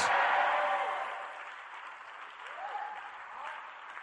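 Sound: audience clapping and shouting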